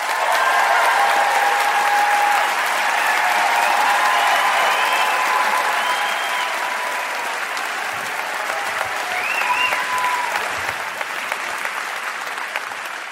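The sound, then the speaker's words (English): Sustained audience applause from a live audience at the Flynn Center for the Performing Arts in Burlington welcoming Ben Cohen and Jerry Greenfield, a dense steady wash of many hands clapping at an even volume for about thirteen seconds, with faint whoops and cheers rising through it. “Look at that applause you got.”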